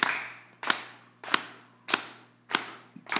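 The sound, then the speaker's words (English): A crowd claps in unison on a steady four-count beat, about six sharp, loud claps spaced evenly, each followed by a short ringing decay, with no talking. “I'm going to clap on a four count. I need you to clap with me.”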